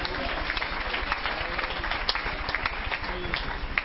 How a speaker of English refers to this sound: Now, we want you to give the Lord a good hand clap of praise tonight.